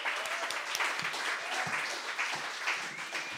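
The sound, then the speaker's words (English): An audience at a storytelling show applauds steadily as the next storyteller is called to the stage, a dense wash of many overlapping hand claps at an even, sustained level with no voices or breaks throughout. “Okay, next to the stage, I give a round of applause for our next storyteller,”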